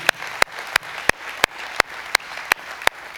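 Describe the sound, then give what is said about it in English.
A church audience at CPC applauds with a hand clap of praise, dense, steady clapping punctuated by sharp, loud claps landing in an even rhythm roughly three times per second, with no talking. “And another hand clap of praise for CPC.”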